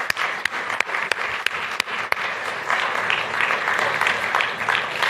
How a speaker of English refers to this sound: Let's just give the band one more round of applause, can we? Good job.